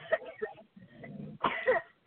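coughing

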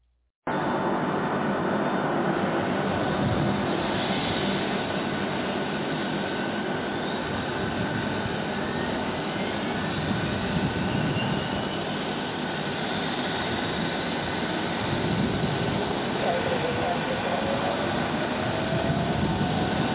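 airliner engines starting up

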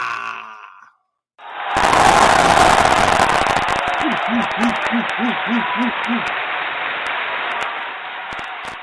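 crowd cheering and applauding

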